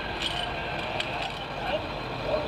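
A school bus engine idles outdoors in front of a house as a child is dropped off after school, a steady low rumble with a broad mechanical hiss that holds evenly throughout without pause.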